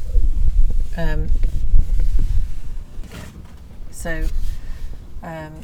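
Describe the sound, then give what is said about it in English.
Strong wind buffets the microphone with a constant loud, low rumble, while short bursts of a person's voice cut through now and then. “Ooh, it's very windy now. You can hear that wind, so apologies for that.”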